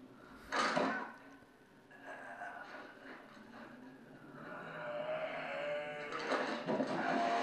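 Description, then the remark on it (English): A chainsaw with an instant start button instead of a pull cord starts after a sharp burst and settles into a steady, buzzing idle that grows a little louder and rougher. “Chainsaw still works.”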